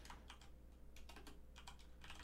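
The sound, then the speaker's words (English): Rapid clusters of keyboard clicks, someone typing a search into Google on a computer keyboard in uneven bursts, fairly quiet, with a low steady hum underneath and no talking. “Typing it in my Google machine.”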